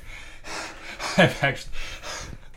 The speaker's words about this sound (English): They put their heart and soul into this, and I'm really glad that this back half of our podcast is just going to be two men heavily breathing.